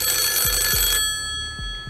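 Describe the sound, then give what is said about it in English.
A telephone rings loudly for about a second during a Deal or No Deal game segment, then cuts off, leaving a steady electronic hum and a few soft low thumps. No one speaks. “Oh, is that the phone ringing?”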